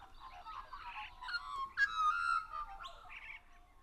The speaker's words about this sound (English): We're really starting to get a chorus now of the Australian magpies. Let's just stop and hear a bit of this natural concert.